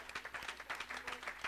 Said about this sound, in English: I wonder if we can just take just a second and just give a hand clap of thanksgiving for the man of God here.